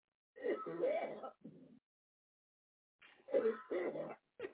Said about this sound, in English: Your chest has to hurt so fucking bad after that. He's got a rough cough.